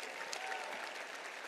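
An audience breaks into steady applause, a dense, even wash of many hands clapping at once without pause or individual rhythm, moderately loud throughout.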